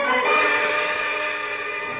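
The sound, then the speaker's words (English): A train rushing past, its steady roar mixed with a long, sustained horn blast that holds for the full two seconds, with no voices. “There's a train to Rome in 30 minutes.”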